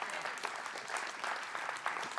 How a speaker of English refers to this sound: We must see and appreciate the value that, yeah, you can clap if you want to.